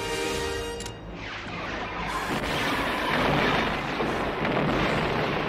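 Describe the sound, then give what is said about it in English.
A spaceship in The Last Starfighter performs the Death Blossom attack, rotating and firing lasers every which way: a brief humming electronic tone gives way to a loud, continuous roar of blasts and rumbling explosions, with no voices. “It's called the Death Blossom attack, where the spaceship rotates and just fires lasers every which way to take out the bad guys.”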